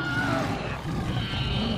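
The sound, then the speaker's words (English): A Bengal tiger gives a deep, rumbling roar that sounds loud and continues steadily for about two seconds, with no one speaking. “Governor Dix shoots the Bengal tiger in the street.”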